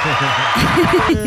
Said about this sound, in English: There we go. There was a clap. Love it.